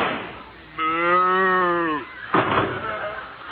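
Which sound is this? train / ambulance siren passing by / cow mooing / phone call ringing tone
cow mooing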